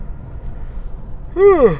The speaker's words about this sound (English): That's yawn number three. That's what, three strikes I'm out? Man, I hope that yawn's not contagious for you guys listening to it, because then you guys are going to want to listen to the rest of the show.